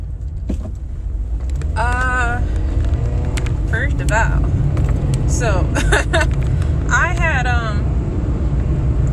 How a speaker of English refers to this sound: Is the plane that loud? My gosh.